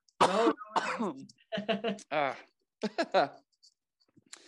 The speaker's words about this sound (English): And so, sorry, I'm gonna cough.